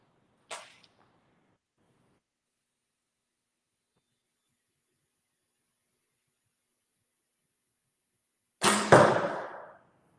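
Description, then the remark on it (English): An arrow is loosed from a bow with a short, sharp snap. It hits the riser and fishtails as it travels downrange. After a long silence it strikes an angled target with a loud thwack that rattles briefly before fading. No one speaks. “So if I launch this arrow, the same as I've done with the other arrows, I'm going to shoot at an angled target here so you can see that a little bit better.”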